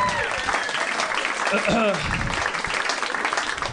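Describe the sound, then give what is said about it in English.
Steady audience applause for a comedian's character bit in a one-man show, a dense wash of clapping that carries through the whole clip while a man's voice talks over it. “Don't applaud.”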